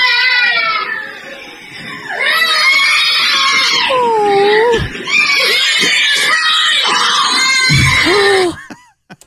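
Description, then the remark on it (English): Children scream loudly and almost continuously for several seconds, high shrill voices overlapping in long wailing cries with a brief dip partway through before the shrieking resumes and cuts off. “Here's some actual audio. The kids screaming and stuff.”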